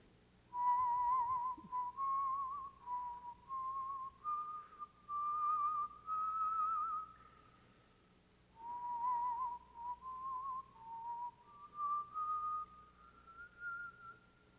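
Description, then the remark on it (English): Hudson Taylor whistles a slow, steady tune, each phrase held and gently rising in pitch, repeated twice with a short pause between. The whistling is clear and alone, with a faint hum underneath. “Taylor, how can you whistle when our friends and our co-laborers are out there facing death?”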